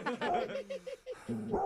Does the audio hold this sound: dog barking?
yes